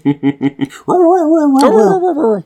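A dog lets out five quick yips in a row, then breaks into a long, wavering whimper that rises and dips for over a second before trailing off.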